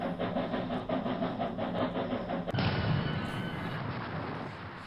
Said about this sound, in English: You might as well play that train sound at this point. We're off the rails.